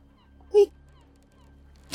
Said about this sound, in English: pull out his rubber chicken and point at the restaurant and squeak at it and say, here, eat.